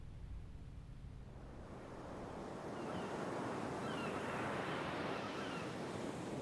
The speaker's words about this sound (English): When anxious, uneasy, and bad thoughts come, I go to the sea, and the sea drowns them out with its wide sounds, cleanses me with its noise, and imposes a rhythm on everything in me that is bewildered and confused.